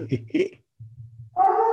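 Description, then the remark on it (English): A dog named Odin, in a home where people work from home, gives two short, sharp barks, then after a brief low rumble breaks into a sustained, wavering howl that holds steady to the end, loud. “sorry, dog. It's okay. We love dogs.”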